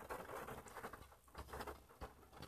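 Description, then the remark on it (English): Soft, steady pattering of rain, a continuous dense texture of small taps with a few slightly sharper drops, fairly quiet, with no voices. “Okay, it's raining. I'm a little worried now that this is gonna fuck up my audio.”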